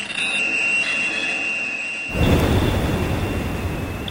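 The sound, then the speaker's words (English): Industrial underwater ocean noise from drilling rigs and boats: a steady high mechanical whine hums for two seconds, then a loud, deep, roaring rumble swells in and continues beneath it. “The industrial, intrusive noises of drilling rigs, boats, explosives.”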